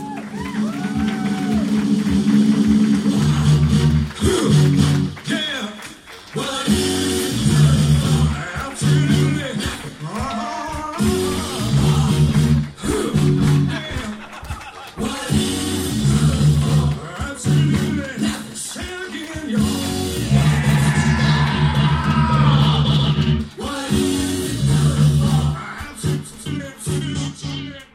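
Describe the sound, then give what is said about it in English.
A band plays a loud, steady live instrumental intro as the show starts, with a driving drum beat and thick bass, running continuously for the whole stretch while scattered crowd whoops and shouts come through. “Here they are, ….”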